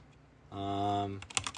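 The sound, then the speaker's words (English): A short burst of computer keyboard typing as someone types out stories, several quick key clicks in a row, coming right after a sustained hummed, voice-like tone. “Oh, they're gonna hear my typing.”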